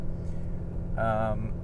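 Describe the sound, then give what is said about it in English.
A motorcycle ridden by a rider in a skull head helmet passes by: a steady low engine rumble throughout, briefly swelling in the middle with a wavering, tonal rev before settling back into the drone. “Oh, there goes a motorcycle rider.”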